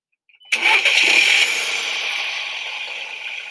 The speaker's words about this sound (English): As the engine hums and purrs.